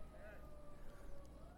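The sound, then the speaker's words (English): A faint ambulance or fire truck siren holds a steady, slowly rising wail over a low rumbling background, with a brief warbling flutter near the start. “Where I just lift up wherever that ambulance or fire truck is going, and I pray that you'd be with them.”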